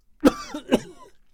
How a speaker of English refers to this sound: … coughed and coughed